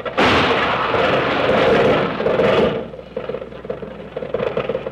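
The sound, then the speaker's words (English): A car jolts hard over a bump with a loud, harsh rattling crash that lasts a couple of seconds, then fades into a quieter, uneven rumbling clatter. No one speaks. “Watch out for that bump up ahead.”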